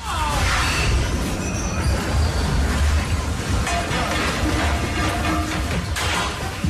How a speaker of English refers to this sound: holy crap, everyone was horrified at the video from a cruise ship off the coast of Norway that got hit by this awful storm. And one woman was live tweeting the whole thing. She had video of what was going on.